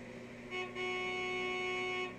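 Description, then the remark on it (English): A car horn blares in one long, steady honk lasting a couple of seconds, loud, with a brief dip near the start before it sounds continuously again, as cars leave a thruway exit into a rest area. “The honking happened as we were getting off the exit for the thruway into the rest area.”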